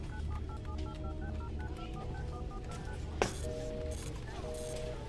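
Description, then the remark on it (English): A rapid run of short keypad dialing beeps from a satellite phone, followed by a sharp click and several bursts of harsh, hissy noise over a steady low background hum. “They have satellite phones, for fuck's sake. How can they all be unreachable?”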